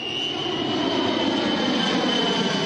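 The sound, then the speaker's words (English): A loud, steady engine roar from an airplane delivering sacks of food in South Sudan fills the whole stretch. A broad rumbling drone with a faint high whine on top stays continuous as the aircraft passes over. “For now, they just hope to see another plane.”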